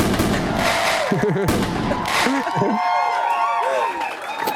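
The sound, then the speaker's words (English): A fireworks sound effect: rapid crackling pops and bangs mixed with whistling rockets rising and falling, loud and continuous, with a hint of crowd noise underneath. “You get some balloons. You get some fireworks.”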